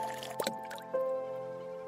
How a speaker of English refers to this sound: Her suspicious self decided to grab a plastic cup on the river floor, fill it up with salt water, and put the tiny fish into it.